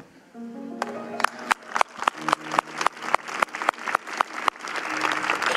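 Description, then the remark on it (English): Audience applause in the morning comes in as a steady, rhythmic run of sharp, loud claps in unison, roughly three per second, over a low sustained tone that fades and returns near the end. “Our hands are getting sore this morning from all the applause.”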